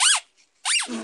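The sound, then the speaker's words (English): Two loud, high squeaks like a squeaky dog toy from a Philadelphia sports mascot's feet as it walks, each rising then falling in pitch, separated by a short pause, with a low voice starting just as the second one fades. “Yeah, it sounds like a squeak toy.”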